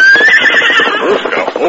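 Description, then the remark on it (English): A horse lets out a loud whinny as it halts abruptly near a towering rock, one long quavering call that rises slightly and then trembles and fades over under two seconds. “As the two horses approached the towering rock, Silver unaccountably sensed the nearness of peril”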